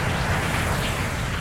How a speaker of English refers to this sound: Nader looked up at the hulking form of the Lockheed C-130 transport plane that was to carry her and a select group of colleagues into the heart of war.